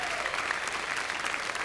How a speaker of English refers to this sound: I know you aren't clapping because you're happy to see me. You just want to get out of here.